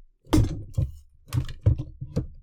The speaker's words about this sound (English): So I have to move away from my mic for the next one. So listen to my rolling chair and then.